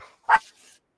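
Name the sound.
dog barking and whimpering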